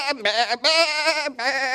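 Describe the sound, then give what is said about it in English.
Wild goats herded into a big pen on San Clemente Island bleat three times in quick succession, loud, each call a nasal, wavering cry with short breaks between them. “They were herding all the goats, and all the goats were in this big pen, and Boy Scouts, we hiked up there to see them, and they're just wild goats.”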